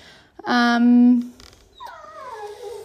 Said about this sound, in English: I've got a whining dog in the background.